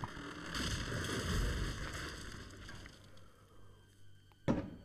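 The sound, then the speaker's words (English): Fireworks go off right next to a window: a low, rolling rumble fades away, then a sharp, loud crack bursts near the end, with another beginning just as it cuts off. No one speaks. “Jesus, these fireworks I heard are like firework.”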